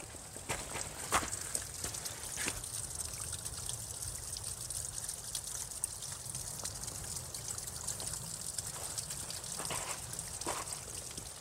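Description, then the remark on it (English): Water trickles steadily off the top of a clay cliff after a couple of dry days, a soft continuous dribble like a miniature waterfall, with occasional brighter splashes and drips and no voices. “It's been dry for a couple of days and you can still hear the water trickling off the top. It's like a miniature waterfall.”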